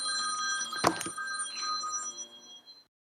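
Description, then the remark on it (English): A telephone rings with a bright, bell-like electronic tone sustained for nearly three seconds, broken briefly by a sharp clatter early on, then trailing off into silence. No one speaks. “Oh, I have to hand off my phone.”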